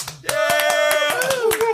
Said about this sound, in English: I don't know if y'all have the ability to put applause in, but this would be a great place to put it in.